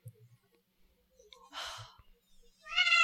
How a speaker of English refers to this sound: Yeah, the fire cat is very mad at all of your thinking.